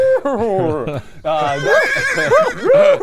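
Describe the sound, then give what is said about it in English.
A person's voice mimics a horse whinny: a wavering, quavering neigh in two bursts, the second louder and more strained after a brief pause, fairly loud with no other sounds. “you gave us one of the best horse noises”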